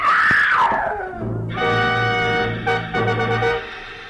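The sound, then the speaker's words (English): An old woman screams loudly at a two-story wooden house on a cliff above the ocean: a piercing shriek that slides downward, then gives way to a long, sustained, harmonically rich wail lasting several seconds, with no talking. “Inside, I found an old woman whom I figured to be my client, leaning against a half-open kitchen door, sobbing and clenching at the gingham apron she wore like it would keep her from screaming again.”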